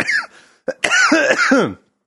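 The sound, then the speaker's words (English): A person at home coughs into a microphone several times in quick succession, fairly loud. There is a short rough burst, a sharp hack, then a longer wheezy, strained run of coughs trailing off into silence. “I'm going to leave that cough in there just so you know it's authentic.”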